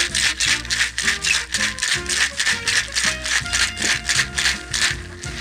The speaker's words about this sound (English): We're adding all three ingredients to a shaker. We are going to shake that up. Here we go.